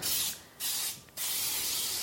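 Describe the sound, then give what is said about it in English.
Three bursts of Baker's Joy baking spray, an aerosol containing flour, hiss as the inside of a cake pan is sprayed, each a bright, airy whoosh separated by brief pauses, with the last burst held longer than the first two. “And I'm just going to use that and spray the inside of the pan.”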